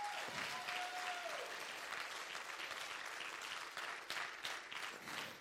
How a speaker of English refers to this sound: I want to give, first let's give a hand clap of honor for our praise team, our youth praise team.